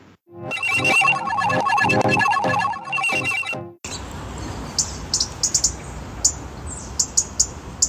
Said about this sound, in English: I'm in Guildford. There's a bird above me in the tree. Probably going to leave me a gift.